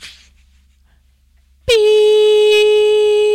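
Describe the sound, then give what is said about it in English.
A brief breathy hiss fades out, then after a second of near silence a loud, steady horn-like censor beep blares in, holding one sustained pitch with bright harmonics until the end. “Beep.”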